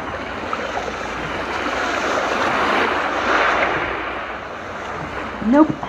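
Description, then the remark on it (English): A steady, continuous wash of lake waves lapping, even in level, played as a background recording rather than heard on site, with a brief swell midway and a short rising voice-like sound near the end. “We're using its waves, but we're actually not at it.”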